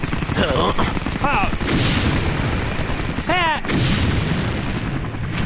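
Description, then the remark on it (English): A helicopter in the sky fires its forward Vulcan cannons: loud, relentless rapid-fire bursts, a dense roaring stream of gunfire with a few shrill rising whistle-like tones cutting through it. “A helicopter! It's firing its forward Vulcan cannons, lads!”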